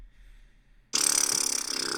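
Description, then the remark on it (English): After a moment of quiet, a person imitates a buffalo with a sudden loud, raspy, breathy bellow, a rough grunting roar that holds steadily for about a second until the end. “Everyone, make your best buffalo sound to get us out of here.”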